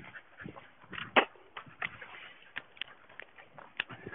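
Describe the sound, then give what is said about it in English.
A female dog barks and whimpers, a string of short, sharp yelps and whines at uneven intervals, with one louder bark standing out from the rest. “These two women just complimented my dog, so I said thanks, they just feed her, and I don't think they got it right away.”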